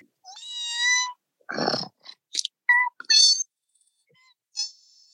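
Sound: person imitating cat noises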